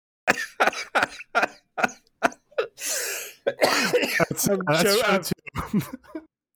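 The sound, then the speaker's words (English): A loud coughing fit on air, brought on by laughing: seven or eight harsh coughs in quick succession, then a raspy gasping breath and a strained, laughing voice as the fit winds down. “Sorry, Mike, for the coughing on air.”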